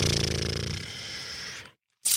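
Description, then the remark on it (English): A snoring sound effect of an orc: a loud, rasping snore with a buzzy, guttural rattle that fades away over a second or so, then a short silence before another harsh breath begins. “I'm assuming these are the orcs. You know the sound of a snoring orc.”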